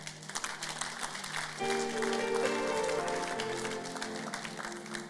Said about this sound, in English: But you are clapping.